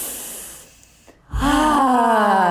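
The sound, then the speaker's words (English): A soft, breathy exhale fades out, then after a brief pause a loud inhale turns into a voiced, sighing gasp that drifts downward in pitch: deep breaths taken in and out. No talking. “Let's take a couple of breaths.”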